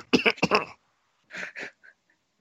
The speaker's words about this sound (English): Sorry, I'm going to have to get that cough checked out. It's been plaguing me for weeks.